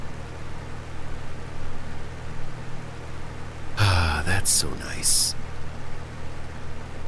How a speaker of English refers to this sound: I mean, I like to sleep with a fan for white noise after all.